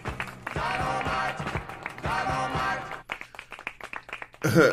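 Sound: clapping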